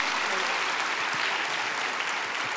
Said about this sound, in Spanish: Denle un aplauso aquí.